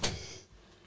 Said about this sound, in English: Oh, close the door.